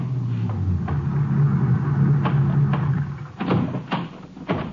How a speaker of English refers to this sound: Barely got him unloaded when another ranger car pulled in.